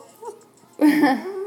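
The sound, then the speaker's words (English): Several dogs vocalize: a faint brief whine first, then a loud, sustained whining, groaning 'talking' sound that carries on to the end. “I know, I got a bunch of dogs here just talking to me.”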